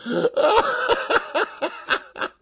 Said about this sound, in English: excuse me. You gave me a coughing fit.